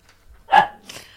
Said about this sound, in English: Exactly, dogs. Exactly.